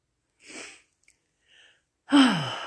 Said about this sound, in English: Big deep breath, Lord. I am breathing in the Holy Spirit.